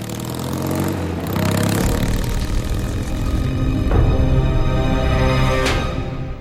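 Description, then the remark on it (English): A motorcycle engine drones loudly and steadily on a road, its low rumble shifting in pitch, with a few brief whooshing surges partway along, an odd vroom, vroom sound that is not the motorcycle. No one speaks. “Did you hear that sound right in the middle? It was kind of a vroom, vroom, vroom. And it wasn't the motorcycle.”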